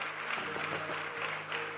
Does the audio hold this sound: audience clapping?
yes